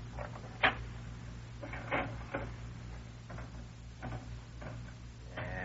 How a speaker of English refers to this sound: He's out in the back room now, playing the slot machine.